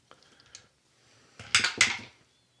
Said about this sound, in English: Those are very bouncy dice.